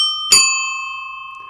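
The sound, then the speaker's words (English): An old-fashioned bicycle bell gives one bright metallic ding, its clear ringing tone hanging on and slowly fading. It stands alone, with no talking. “Of course, the bells of days of old are still around.”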